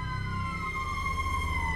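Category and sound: vehicle, ambulance siren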